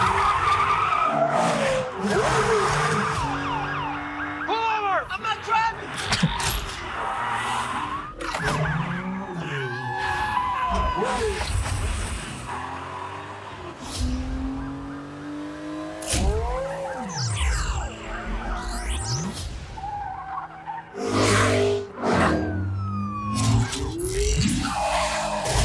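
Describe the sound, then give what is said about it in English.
A loud, busy film car chase in which the Autobot Mirage runs from the police: tires skid and squeal again and again over roaring engines, with wailing police sirens rising and falling throughout and brief bursts of voices mixed in. “Like with Mirage, you know, he has that, they have a great car chase in here where he's running from the police.”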